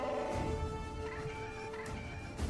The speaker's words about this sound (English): That bird is Jar Jar Binks.